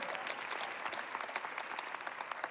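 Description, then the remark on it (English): An audience claps hands in dense, steady applause, many overlapping claps forming a continuous crackling wash at an even, moderate level with no voices heard. “If you receive that today, go ahead and clap your hands if you're online and you receive that.”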